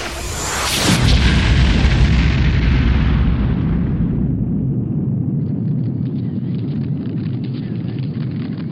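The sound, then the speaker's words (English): A huge explosion bursts at once as something collides with a comet, then a deep, loud rumble rolls on for several seconds, slowly thinning into a low crackling roar. “Whoa, what's that streaking toward the comet? Hooray! It's Super Pal! Oh no! They're gonna collide!”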